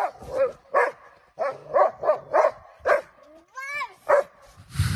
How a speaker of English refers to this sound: And he's barking and she's going, woof, woof. Look at him rolling around. Look at him jumping.